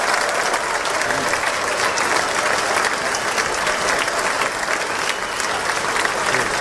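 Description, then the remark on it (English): Sustained applause from a large audience, including congresswomen, in a room with President Trump, a dense, steady wash of many hands clapping at once that holds at an even loudness for the whole stretch, with no voices standing out. “That's a lot of clapping.”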